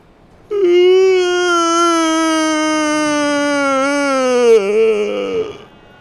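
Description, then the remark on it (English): A single long, loud wailing cry from a person in a crowd just drenched by a fountain of liquid diarrhea. The moaning, sobbing lament holds a steady mournful pitch for about four seconds before wavering and breaking downward into a shaky, sobbing end. “Finally, someone screams, a horrible moaning cry of lamentation.”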